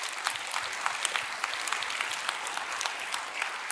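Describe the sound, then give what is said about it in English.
A church audience claps steadily, cheering for the church's kids: dense overlapping hand claps forming a continuous bright wash, with a few scattered cheers mixed in throughout. “Can we just cheer for our kids?”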